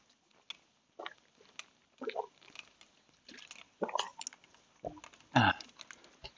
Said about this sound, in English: Quite a few places I've gone to refill, run out of my tomato juice, my gazpacho, which I really, really love. And I think I'm actually drinking more, picking up when you get a gulp here.